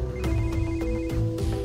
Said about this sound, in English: She tried to call Brandy's cell phone, her old one, and she said she heard it ringing inside